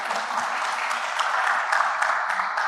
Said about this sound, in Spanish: Un aplauso.